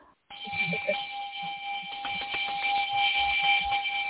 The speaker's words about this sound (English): There's the birthday bell.